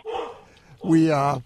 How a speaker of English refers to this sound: Whose dog is that? That's Tater. Yeah. He heard a bee buzz by in Oklahoma.